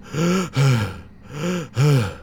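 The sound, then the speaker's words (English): A voice imitates heavy, raspy breathing: two slow in-and-out cycles, each breath drawn out and voiced with a throaty, moaning tone, fairly loud, with no talking. “So, Anders, you hear that someone is breathing.”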